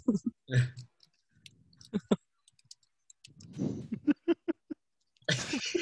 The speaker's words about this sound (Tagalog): Teka, nagtatype to